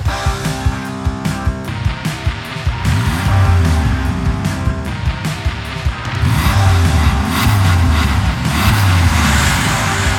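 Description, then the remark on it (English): A car engine roars loudly and continuously, its pitch rising and falling as the vehicle speeds along at about 60 miles per hour, using both lanes and rounding curves, with heavy road rumble throughout and no voices. “I got up to an uncomfortable 60 miles per hour, used both lanes, rolled through crossroads, roared around curves, prayed I wouldn't meet another car.”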